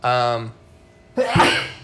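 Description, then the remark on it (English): A single loud sneeze: a drawn-out voiced intake of breath, a brief pause, then a sharp, breathy explosive burst that trails off quickly. “bless you. Excuse me.”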